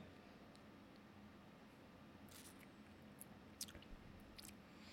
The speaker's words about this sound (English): Hold on. I gotta talk about the evolution of a flavor on this thing. Wow. I gotta get another sip.